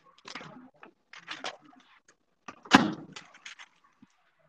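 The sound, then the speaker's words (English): Knocking on a door: a handful of irregular raps, one sharp loud thud near the middle, mixed with muffled bumps and rustling. “But the door. Somebody's knocking.”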